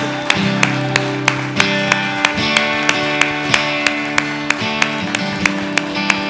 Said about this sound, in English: Oh, come on, now give the Lord a clap offering.